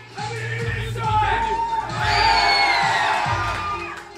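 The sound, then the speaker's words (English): A large wrestling crowd cheers and shouts continuously as a wrestler dressed in bright orange interacts with them while walking towards the ring, with individual yells and whoops rising above the din and a louder swell of excitement midway through. “Bam, dressed in bright orange, interacts with the crowd as he walks towards the ring.”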